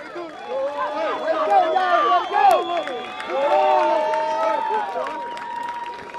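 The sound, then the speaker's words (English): A lively crowd cheers at a softball championship, the 2018 Twin City Tournament, after Illinois American Water's 12-3 win over Plumbers and Pipefitters, as players shake hands. Overlapping shouts, cheers and excited voices form a dense, continuous roar of many people celebrating, with a steady loudness throughout. “Crowd going crazy behind us. Want to let you hear a little bit of the atmosphere there as the players are shaking hands.”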